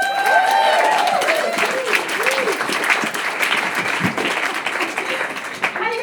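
A crowd applauds loudly and steadily, a dense wash of many hands clapping at once, with a few whoops and cheers rising over it before it tapers slightly near the end.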